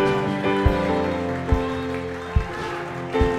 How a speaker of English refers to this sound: Come on, I want you to keep on cheering them.